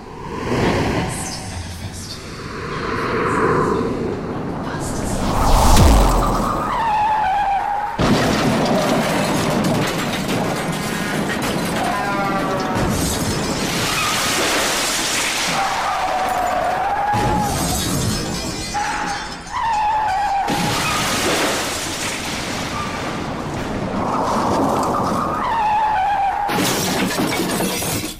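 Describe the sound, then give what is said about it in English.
Tires screech repeatedly and loud crashes with shattering glass burst out, a chaotic collision of two cars that stays dense and noisy throughout, with faint voices underneath. “Two cars crashing and I made it happen.”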